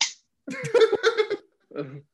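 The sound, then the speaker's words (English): One sharp hand clap right at the start, then a voice making a rising, sung or hummed sound imitating the Star Tours ride sound, followed by a short burst of vocalizing. “at this moment when I clap, put in the Star Tours sound.”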